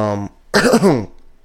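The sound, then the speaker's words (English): A single dry, raspy cough from a person in dry air, loud and harsh for about half a second, following a brief voiced murmur, then quiet. “It's just a dry cough.”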